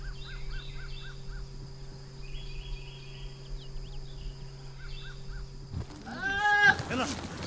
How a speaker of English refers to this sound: Ahead, yes, those are goats in those trees. There are some animals you expect to see up in a tree. Birds, squirrels, cats, perhaps. But goats?